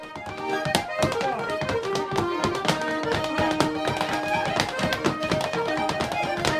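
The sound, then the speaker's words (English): Quick, rhythmic foot taps from a 75-year-old man dancing clatter in sharp bursts over steady instrumental music, the taps loud and crisp throughout. “Yet when he dances, all eyes are on him, enjoying watching someone who's completely at home in himself.”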